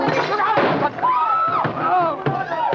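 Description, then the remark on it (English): A loud revolver shot rings out amid a scuffle, going off when the holder's hand is knocked and fired from some distance, with sharp bangs and thuds breaking through strained shouts and grunts from people struggling. “No, no, he knocked my hand. The revolver went off.”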